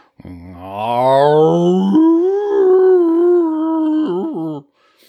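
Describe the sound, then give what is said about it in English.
A person's voice imitates a dog named Aria howling while asleep and dreaming, one long, loud, drawn-out howl that starts low, rises, holds steady for a few seconds, then wavers and breaks off. “Aria was asleep and she was dreaming.”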